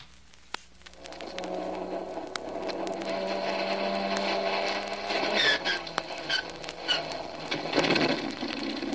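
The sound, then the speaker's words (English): The number one engine of an aircraft cranks and catches after the ignition switch is turned on, its steady mechanical drone rising and growing rougher, with sharp pops and clattering bursts as it fires up. No one speaks. “Ignition switch. On. Here we go with engine number one.”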